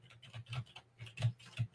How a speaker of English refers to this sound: That's all you going to hear is stuff because constant typing. I'm like, I'm at work. They call me. I'm like, what you doing? I'm at work. You hear the keyboard clicking? I'm at work.